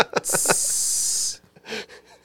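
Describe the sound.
A person makes a long, steady hissing sound with their mouth, mimicking a snake, lasting about a second. Brief vocal sounds come just before it, and a softer breathy hiss follows.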